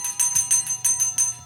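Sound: bell ringing repeatedly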